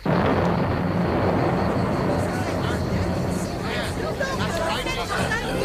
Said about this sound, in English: Thunder? I hope we shan't have a storm. That was God talking.